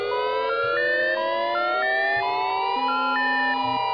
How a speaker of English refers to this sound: In most places, the standard attack warning signal is a 3 to 5 minute wavering sound.